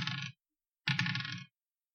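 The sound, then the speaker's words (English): Two d20 dice are rolled, clattering and tumbling across a hard surface in two separate bursts, a brief rattle followed by a longer, louder one, with no voices; the two rolls total 17. “No, roll me 2 d20. Add them together.”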